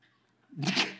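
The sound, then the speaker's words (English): After a brief near-silent pause, a single sharp sneeze bursts out from the audience during a sermon, a short breathy explosion of noise with no talking around it. “God bless you.”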